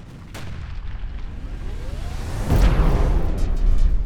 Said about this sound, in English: Everyone shield your eyes. The explosion is imminent.